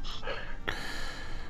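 A sharp gasp of sudden recognition as a quiz player realizes the answer to a Disney attraction abbreviation: a few quick breathy intakes, then a sudden rush of air trailing into a sustained breathy hiss, with no words spoken.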